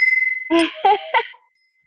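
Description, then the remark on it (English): A lingering tone from a new bell fades out, then the bell is struck three times in quick succession, bright, before the ringing stops and silence follows. “I love it. It's my new bell.”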